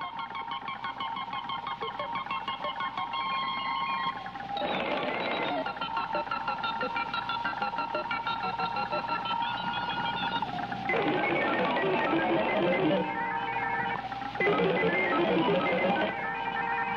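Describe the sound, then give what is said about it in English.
A film's electronic score: dense electronic bleeps and blips chirp in rapid, shifting patterns over a steady humming drone, with brief bursts of noisier crackle breaking in every few seconds. The texture stays busy and loud throughout. “It's an electronic soundscape crackling with bleeps, blips, drones, and all manner of computerized sounds, which hint at the minimal electronic scores yet to come.”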